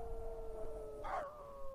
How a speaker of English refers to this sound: Again, I heard the low keening of dogs and wondered where they were kept. The sound was so mournful, I could feel a mass of tears accumulate in my throat.